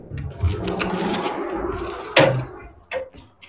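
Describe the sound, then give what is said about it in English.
A door thuds shut sharply with a loud wooden bang, followed by a softer knock a moment later, after a stretch of low shuffling and rattling noise. “Sorry, homeboy is closing doors again.”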